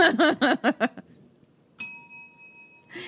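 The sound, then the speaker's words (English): A single bright doorbell chime at a woman's mother's house strikes sharply and rings on with a clear, steady tone for about a second. Someone speaks just before it, and talk resumes as it fades. “They ring the doorbell to her mom's house. Bing bong.”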